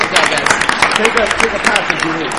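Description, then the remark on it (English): An audience breaks into dense, steady applause lasting a couple of seconds for a quiz contestant who wound up at 7,200, many hands clapping at once, with scattered voices mixed into the noise. “give him all a round of applause.”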